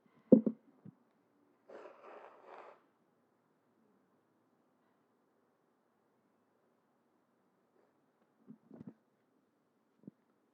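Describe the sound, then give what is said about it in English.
A person blows their nose in a single rough, breathy burst lasting about a second, with a few short sniffs and snuffles before and after in otherwise quiet surroundings. “I'm going to blow my nose really quick.”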